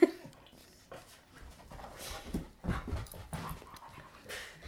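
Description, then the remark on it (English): Sam the dog pants in quick, breathy bursts, mixed with soft high whimpers, wanting to play while its owner works from home. The sound is moderately loud and continuous across the few seconds, with no talking. “This is Sam the dog.”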